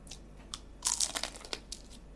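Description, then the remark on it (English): A crisp crunch of someone biting into crusty sourdough bread spread with honey, a dense burst of crackling followed by a few smaller chewing crunches, with no talking. “That was a crunchy bit.”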